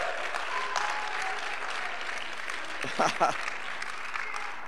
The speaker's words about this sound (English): Somebody needs to give the Lord a hand clap of praise today. Woo!